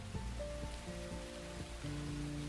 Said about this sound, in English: The only sound waiting for them outside was the sound of the rain splashing into puddles on the street. Nobody was outside. No cars were driving. It was completely silent. Only the rain.